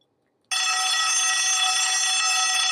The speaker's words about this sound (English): You know what that sound means. This is the bonus alarm.